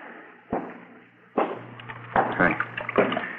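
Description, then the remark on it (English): A steady rush of running water from a tap, with several dull knocks and clatters breaking through it at irregular moments. “Turn on the water tap, huh?”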